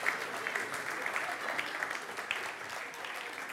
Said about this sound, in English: Let's give another applause to the wise men. Thank you very much, guys.